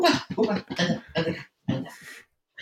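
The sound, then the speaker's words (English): Rapid bursts of small dog noises, grunts and snuffly whimpers in quick succession as a female dog is lifted up, then a breathy huff and a brief pause before one last short sound. “I have a dog. Oh, hold on. Let me just put her up here.”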